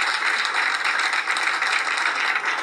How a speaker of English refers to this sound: You're a little late there. Perfect. Right on the clap there.